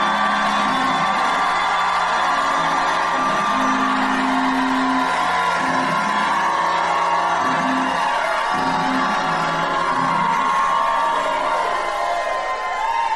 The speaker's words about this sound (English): Now shout like you never shouted in your life.